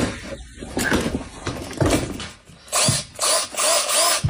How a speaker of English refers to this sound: Fake drilling. The TV is not working. Oh, Lord, he's doing too much. Just banging on things.